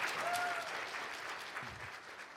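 An audience claps steadily in a dense, continuous burst of applause, holding at a fairly even level for a couple of seconds before easing slightly, welcoming a speaker coming up to share on a morning.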